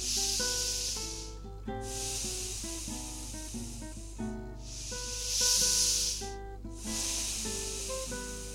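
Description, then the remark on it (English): Two slow, deep breaths taken during a meditation relaxation exercise, each a long airy inhale followed by a long exhale, making four broad hissing swells over soft, steady background music, with no talking. “Now do two very deep breaths.”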